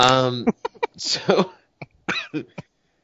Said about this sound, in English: Now I'm coughing.